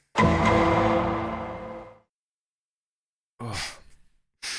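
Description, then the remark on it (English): A person lets out a long, voiced yawn that stretches for about two seconds and trails off, followed after a pause by a couple of short, breathy exhales. “I thought you were about to go into a big, like, the winner, but then you just yawned.”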